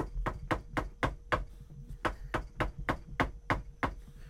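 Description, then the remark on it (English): An innkeeper raps steadily on the door of Rabbi Elimelech Spira's home: two quick runs of sharp, evenly spaced knocks, about a dozen in all, separated by a short pause, with no voices. “He came to him and knocked on his door.”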